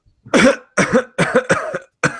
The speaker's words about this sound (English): You can tell how sick I am because I just coughed on command.